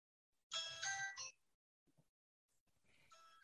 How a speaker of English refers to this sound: Jamie's phone agrees. It's giving its amen. I forgot to turn off the ringer.